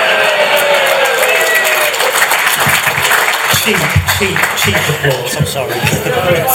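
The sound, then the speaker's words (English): A crowd applauds and cheers steadily, dense clapping mixed with scattered whoops and shouts, staying loud throughout with voices rising in the mix toward the end. “Cheap applause, I'm sorry.”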